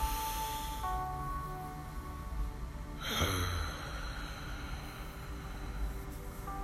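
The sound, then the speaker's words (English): One slow, deep breath: a long, airy inhale through the nose, followed by a steady, breathy exhale out the mouth, with no talking. “And just like in any other episode, we're going to begin this episode with breathing. And your nose.”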